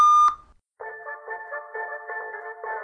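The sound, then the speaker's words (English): A single sharp electronic voicemail beep on a phone, after the greeting asking the caller to leave a message, sounds briefly and cuts off, followed after a short gap by a steady, buzzy, warbling tone pattern. “This is Andy's phone. Leave a message.”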